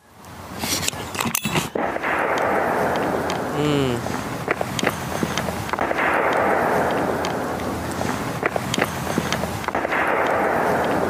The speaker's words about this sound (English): There is no doubt that this sounds like a Civil War era cannon but here's a few being replays fired of it. Right on top of us.